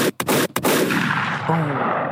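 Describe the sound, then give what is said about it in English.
A quick burst of gunshot sound effects, three sharp loud bangs in rapid succession followed by a long echoing rumble that fades out, with a brief voice-like tone near the end. “Where my gunshots at? There we go.”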